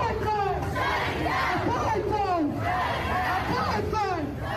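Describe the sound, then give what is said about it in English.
A crowd of about 100 people protesting Israel on the circle chants slogans such as "Free Palestine" in unison: loud, rhythmic shouted phrases repeat every second or so over a steady roar of many voices. “And they are, what are they chanting? Free Palestine.”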